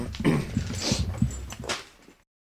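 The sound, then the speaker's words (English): A dog whimpers and whines in a run of short, high, pleading cries, moderately loud, fading out after about two seconds. “Oh, man, I've got a dog with him. I'm going to throw the dog out a sec.”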